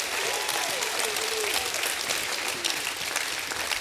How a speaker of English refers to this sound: Why don't you stand up and put your hands together and get a little shout in your life? Why don't you thank him for another day? Don't wait till everything falls apart. Thank him today. Thank him. Come on, give him a hand clap.